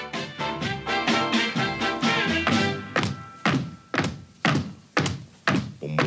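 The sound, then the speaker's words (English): Heavy, rhythmic foot stomps thud in a steady beat, first over dense, busy music and then more starkly as sharp, booming hits spaced about half a second apart. “You know, the old foot stomp signal.”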